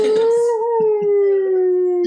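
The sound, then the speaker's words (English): A voice imitates a dog's howl: one long, loud, steady wail that slowly sinks in pitch over about two seconds, with faint rough sounds beneath it. “I feel there'll be some dogs barking as well.”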